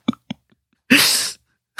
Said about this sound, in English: Coming home coughing.